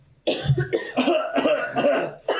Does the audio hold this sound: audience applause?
no